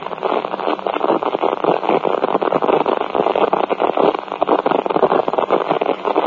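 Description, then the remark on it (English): Steady, crackling radio static fills the whole stretch, a dense band-limited hiss with rapid flickering pops, loud and unbroken, with no voices coming through. “I mean, there's so much interference.”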